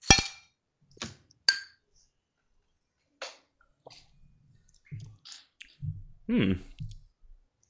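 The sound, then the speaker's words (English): Beer glasses clink together in a toast before a beer is tasted: a bright ring followed by two more sharp taps, then softer knocks and low muffled sounds as the glasses are handled. “Ready to give this a go? Yes. Cheers.”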